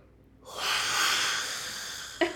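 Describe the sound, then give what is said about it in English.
A voice imitates a woman's big, drawn-out yawn: a breathy, sustained exhalation lasting nearly two seconds, fairly loud, ending with a short catch of breath. “Yawning is fine, but she yawned like this.”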